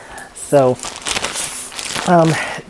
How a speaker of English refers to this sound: And what you hear with the oven noises right now is actually not that chicken cooking, it's some other chicken cooking, because we've got members of the household that want their breakfast right away.